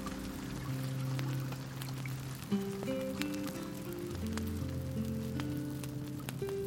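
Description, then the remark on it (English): Soft, steady rain in Hilo patters continuously with scattered drips, mixed with sustained, slowly shifting musical tones underneath. No one speaks. “I remember Hilo rain, the soft, gentle, unseen rain.”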